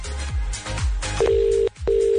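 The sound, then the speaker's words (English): An outgoing call's ringback tone after a phone number is punched in to call a listener: two steady, fairly loud electronic tone bursts with a short silent break between them, following a few brief low swooping thumps. “Punch in that number, baby. Let's see. Oh, it's ringing.”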